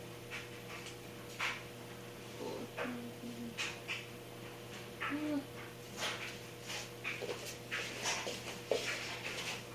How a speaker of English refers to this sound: Sorry guys, I had to give my cat a little smooch there. He's waiting for me. He's just sleeping over on the bed.